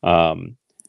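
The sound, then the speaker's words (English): After a short burst of voice, two quick, crisp computer mouse clicks sound close together, sharp against an otherwise quiet background, as someone clicks around to stop sharing their screen. “But a couple of things that I want to touch base, and what I'll do is I'll go ahead and stop sharing this so everybody doesn't have to see me kind of clicking around here.”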